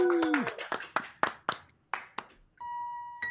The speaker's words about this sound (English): Well, everybody, one more round of applause, please, for Mr. Peter Clines.